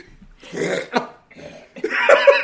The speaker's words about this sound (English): You gotta stop coughing like that.